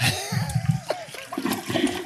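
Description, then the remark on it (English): A toilet flushes with a rushing gurgle of water swirling down the bowl, loud, lasting about two seconds with a faint voice murmuring beneath. “Flush it up, flip it.”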